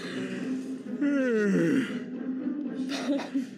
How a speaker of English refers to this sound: And then cut yourself off with the yawn.